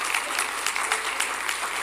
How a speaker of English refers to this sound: You're all clapping up front, but back there, you're all like out in the daze.